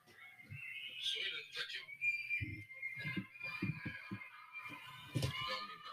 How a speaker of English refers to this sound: You know what that is? That's just people screaming because they can't get out of their homes. What's this thing called here? It's Shanghai, China. They're in a lockdown, dude.